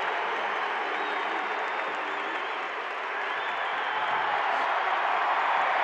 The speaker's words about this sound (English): Crowd gives Rudy a big cheer.